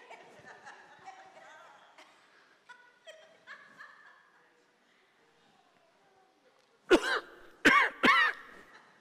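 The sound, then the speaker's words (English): Three loud, sharp coughs burst out together near the end, like someone hacking and clearing their throat, after several seconds of quiet, faint voiced sounds. “You don't realize how often you cough when nobody's paying attention to you.”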